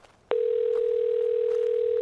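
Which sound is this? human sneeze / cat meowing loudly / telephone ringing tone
telephone ringing tone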